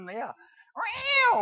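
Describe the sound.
A human voice imitates a cat meowing: a short, falling mew, a brief pause, then a longer, louder, drawn-out meow, clear with no other talk.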